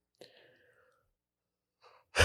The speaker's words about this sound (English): I got a yawn working here. I'm sorry.